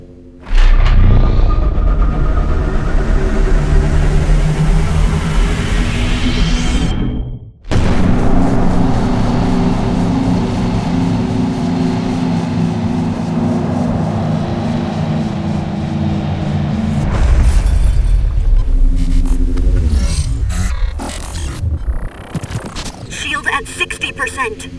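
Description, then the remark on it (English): Loud cannon fire from a quantum cannon and explosions boom one after another into a continuous deep rumble, with a brief gap before the barrage resumes and crashes on. “Professor Radiform, resume cannon fire.”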